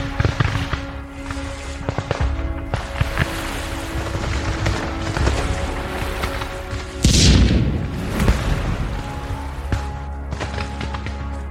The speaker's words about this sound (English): They're firing at the Aventine! Fuck! Firing at the other ship.